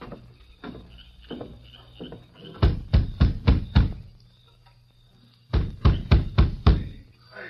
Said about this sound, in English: Now you knock on the door.